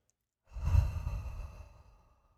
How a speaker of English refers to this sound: You know you need it, baby. Let's do it again. Breathing in and out. Oh, I can feel my nervous system regulating. Whew.